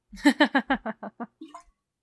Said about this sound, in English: and you can't see this, listeners, but I'm drinking some water here because I am parched.